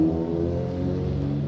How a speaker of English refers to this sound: What's up man we got a motorcycle here.